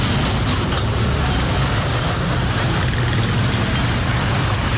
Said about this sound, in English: Since the situation has been worsening, potholes here have become bigger, making it almost impossible for drivers to maneuver the roads under the interchange. This results in huge traffic jam around the area.